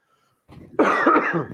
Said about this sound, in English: Does anyone have a lingering cough, like just a little cough that won't go away? Yeah, that's what we've had. It never leaves.